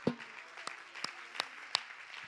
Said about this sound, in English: Could we clap our hands to the Lord?